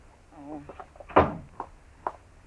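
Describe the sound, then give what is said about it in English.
A door is shut with a single solid thump, preceded by a brief vocal sound and followed by a couple of lighter knocks. “Shut the door, Chester. It's fly time.”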